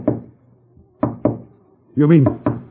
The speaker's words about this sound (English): those knocks you heard were a spirit rapping device